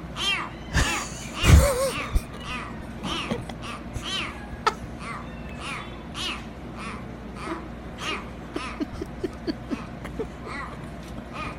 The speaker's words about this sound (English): Adorable kitten hasn't quite figured out how to meow, so he quacks instead.